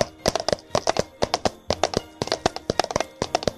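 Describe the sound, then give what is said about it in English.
A rapid run of crisp clopping taps imitates a horse running in threes, falling into quick repeating groups of three, fairly loud, with no speech over them. “He runs in threes, so it's like 1, 2, 3, 1, 2, 3”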